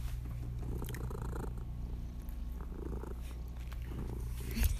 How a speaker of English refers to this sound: Sorry, the purring you probably hear in the background is our cat. I think she came in for the first episode, too.